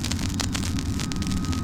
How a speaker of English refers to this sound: Here's the jet coming in for landing. If you can hear it above the crackling, here he comes.